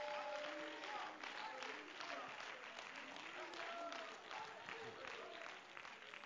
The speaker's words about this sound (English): Oh, somebody give him a hand clap of praise here this morning.